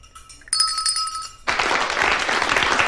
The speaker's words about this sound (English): I'm waiting for the applause.